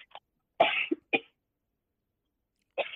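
A person coughs in short, harsh bursts: a couple of loud hacking coughs, a pause, then another cough starting. No talking, just raspy, breathy coughing.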